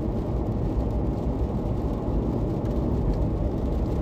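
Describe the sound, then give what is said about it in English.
A steady, low rumble of traffic fills the scene, with engine drone and road noise from several vehicles passing outside, continuous and fairly loud with no talking. “There's like cars all over the place.”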